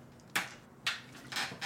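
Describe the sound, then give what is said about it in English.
A chair creaks and squeaks several times in quick, uneven bursts, moderately loud, with no one talking. “That's a very squeaky chair you got.”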